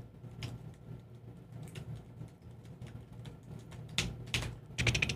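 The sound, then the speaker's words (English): Keys clatter on a computer keyboard as someone searches for a verse in Hebrews, in irregular bursts of soft clicks over a steady low hum, the taps growing louder and quicker toward the end. No one speaks. “You can hear me typing.”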